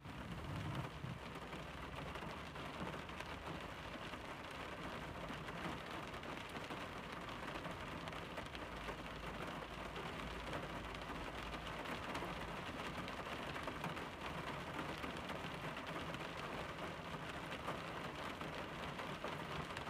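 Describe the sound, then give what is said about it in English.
Steady rain drums on a car roof and windows in a dense, continuous patter, with a low rumble underneath and no voices, holding an even level for the whole stretch. “And so I recorded about 30 seconds worth of me just listening to the rainfall as I took a break in my car for a second.”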